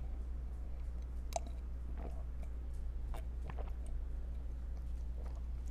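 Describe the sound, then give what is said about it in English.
Quiet sips of a matcha latte made with almond milk and honey from a mug, with soft wet mouth clicks and swallows scattered over a few seconds above a steady low hum, with no talking. “I'm swirling the matcha in my self-made babe mug”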